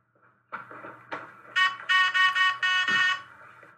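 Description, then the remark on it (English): A couple of dull knocks, then a loud, harsh electronic buzzer blares in four quick back-to-back bursts for about a second and a half before cutting off. The buzzer is used by the TV character April, played by Aubrey Plaza. No one speaks. “First of all, I love that lady. Whoever, with the buzzer, what's her name?”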